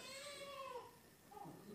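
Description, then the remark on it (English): A newborn baby cries in a thin, high-pitched wail that wavers and bends, breaks off, then rises again in a second shorter cry. No one speaks over it. “We've got a newborn here. Sounds like they agree.”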